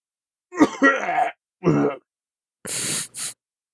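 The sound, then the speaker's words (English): A man, a grandfather, clears his throat with two rough, gravelly rasps, then follows with two short, breathy coughs, with no other sounds around. “Just as she was about to rise up and leave, she had heard him cough.”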